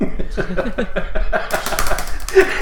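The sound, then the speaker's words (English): Rapid, steady clatter of keys being struck hard on a computer keyboard as a person searches for someone, a dense run of sharp clicks with no voices. “furiously banging away on his keyboard trying to see if he can find someone”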